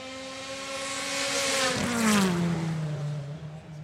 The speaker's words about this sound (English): I think I can hear something coming, yeah. Something that sounds like a car.